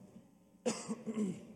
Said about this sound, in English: If I'm coughing, it's the vents for some reason. It's not because I'm sick or anything like that.